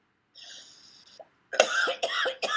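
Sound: cough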